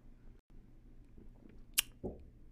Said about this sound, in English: Look, man, take me another sip because that was beautiful.